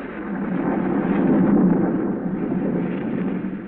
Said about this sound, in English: A storm rages wildly over the countryside.